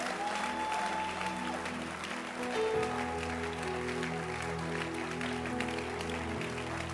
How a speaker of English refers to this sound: It's good to clap your hands. Now let's clap our hands to welcome ourselves to church tonight.